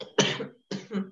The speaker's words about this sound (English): Sorry, I keep coughing. It's really smoky. It's like getting in through the windows.